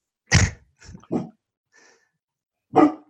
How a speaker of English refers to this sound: That's his big dog bark. That is his big dog bark.